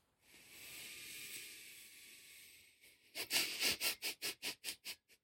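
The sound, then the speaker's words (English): A long breathy exhale through the nose carries a thin, steady whistling tone, followed by a quick rhythmic series of about eight sharp, breathy nasal puffs, from someone who has not breathed properly for three days. No one speaks. “And now my nose is doing a very fun thing where it makes a whistling noise when I breathe out.”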